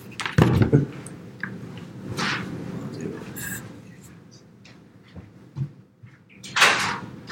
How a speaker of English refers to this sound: Sorry. Hold on, one second. We're getting a knock on the door.